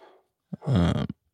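A dog lets out a loud, close growling bark, one short rumbling burst with a quick yap before it, then silence. No one speaks.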